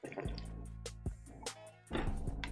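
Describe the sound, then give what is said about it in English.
Wet gulping and liquid sounds of someone taking a swig of water, with a few soft swallows and sloshes in quick succession and no talking. “With that swig of water out of the way.”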